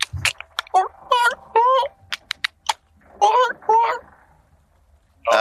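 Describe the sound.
A voice imitates the Grell, creatures about to descend and attack: a quick series of sharp clicks interspersed with rising, warbling chirps, going back and forth in bursts with short pauses between them.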